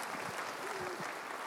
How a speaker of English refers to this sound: we are a church. Yes, yeah, we can clap. I'm sorry, I started talking.